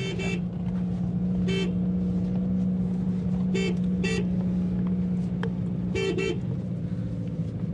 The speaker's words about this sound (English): How do you do bird scaring? There's different ways. You can use gas guns that have bangers, or you can put kites out, or you can go around your vehicle and toot the horn or the bike.